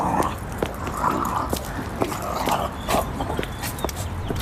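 Two dogs scuffle in the background of a TikTok video, with repeated growls, snarls and sharp yips in a continuous, chaotic tussle at moderate loudness.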